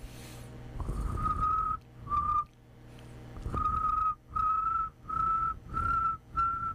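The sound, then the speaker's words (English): A person whistles an imitation of cricket chirps: a steady high-pitched tone, first in a couple of longer notes, then in a run of short, evenly spaced bursts. No one speaks. “I want to show you guys, I learned how to make cricket sounds.”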